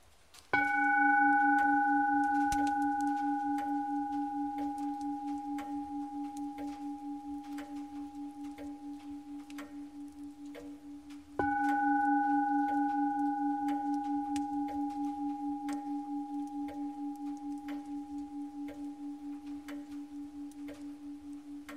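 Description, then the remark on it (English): A meditation bell is struck twice, about eleven seconds apart. Each strike rings out with a deep, steady tone and a gentle wavering shimmer, fading slowly with no voices present. “Even after the bell.”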